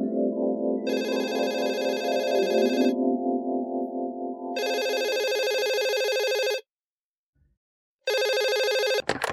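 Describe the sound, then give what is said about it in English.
A telephone rings in loud, repeated electronic bursts with brief pauses between them, clear, ending abruptly as if picked up. No one speaks. “I was laughing to myself when the phone rang.”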